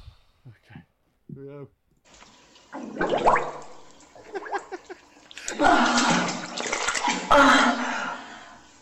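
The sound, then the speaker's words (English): Bubbling, gurgling water sounds in a bathtub from farting bubbles underwater, with splashing and sloshing bursts growing louder toward the end; a few short voiced sounds come early, before the water noise starts. “Farting bubbles underwater and she's drinking.”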